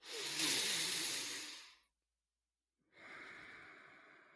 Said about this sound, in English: Well, let's end this with a nice deep breath.